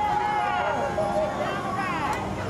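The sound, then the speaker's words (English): A crowd of mourners on the street at the entrance to the Edmund Pettus Bridge calls out thanks during Congressman John Lewis's funeral procession, in overlapping voices: a steady, continuous hubbub with no single voice standing out, holding at an even level throughout. “Calls of thank you from the crowd of mourners on the street, very much celebrating the life and legacy of Congressman Lewis.”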